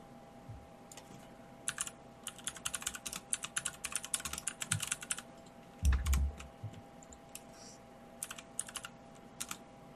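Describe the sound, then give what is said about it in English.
Rapid clicking of computer keys in irregular bursts, with a steady low hum underneath and one heavier thump midway; brief pauses break up the typing. “We can all hear the typing.”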